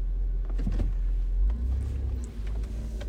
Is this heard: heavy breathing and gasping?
no